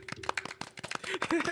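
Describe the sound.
A brief, scattered round of applause from a small group welcoming a guest joining their broadcast, with sharp, irregular hand claps mixed with voices talking and laughing over them.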